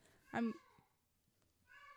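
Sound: cat meowing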